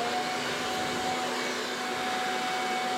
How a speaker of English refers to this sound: Instead, my dad happened to have a modern alternative sitting in his garage. Hurricane power leaf blower.